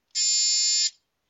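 A single loud, harsh electronic buzz lasting under a second, a steady flat tone with strong overtones that cuts off abruptly, followed by near silence.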